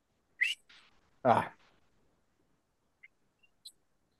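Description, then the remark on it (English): Someone attempts a two-finger whistle, producing a short, thin, breathy chirp, followed by a brief vocal burst and two faint, high squeaks, like a small bird peeping. “Yeah, like it came in like a little bird chirping on the microphone, but it was something.”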